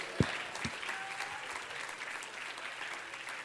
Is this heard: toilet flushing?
no